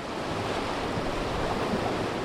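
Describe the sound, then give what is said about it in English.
Steady, loud rushing of whitewater rapids on the Upper Kern River in the Southern Sierra as a raft launches, a dense continuous roar with no pauses, some wind buffeting the microphone underneath. “Almost as soon as we launch our boat into the river, the directions start coming, and they cascade as swift as the water.”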